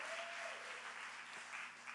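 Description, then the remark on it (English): An audience applauds God one morning in a sustained, steady round of clapping, dense and even throughout the two seconds, with no voices standing out above it. “Why don't you give God a great round of applause this morning?”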